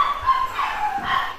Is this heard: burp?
no